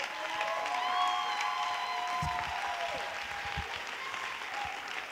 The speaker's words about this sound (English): Can we clap our hands and welcome